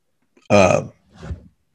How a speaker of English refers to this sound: Excuse me. Apparently got a burp all the time.